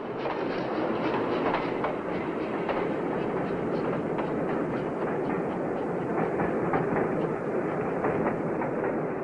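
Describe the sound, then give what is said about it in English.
A train rolls steadily along the rails, its wheels clattering in a repeated clickety-clack over a constant loud rumble, with no voices; a departing train as at the end of Fellini's 1953 film I Vitelloni. “Made in 1953 and seen by Toto as a teenager, Fellini's semi-autobiographical film charted his years as a young adult in his hometown of Rimini and how at the end he left on a train without saying goodbye to his friends.”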